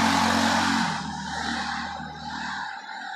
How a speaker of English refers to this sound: This guy with the fucking motorcycle.